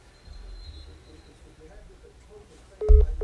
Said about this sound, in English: Oh, well, I lost connection. You just lost him. I heard beep, beep, beep, beep.